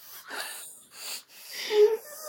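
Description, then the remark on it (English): Three deliberate, audible breaths, alternating in and out in a slow rhythm. The last is longer and ends in a slight wheezy, whistling tone. “I'll be breathing in, breathe out.”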